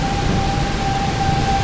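A tornado siren holds a steady wail over the constant hiss of heavy rain during a storm, the tone unbroken and fairly faint beneath the downpour, with no voices.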